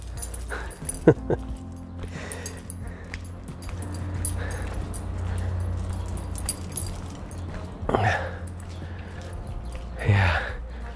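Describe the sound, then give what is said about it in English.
Runes, a dog, sniffs around outdoors on a morning walk: a few short, breathy snuffling bursts and light jingling of tags over a steady low rumble, with no one talking. “Runes, come on. What's he sniffing? Sometimes he gets completely distracted by something that he smells.”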